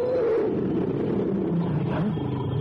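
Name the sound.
tiger roaring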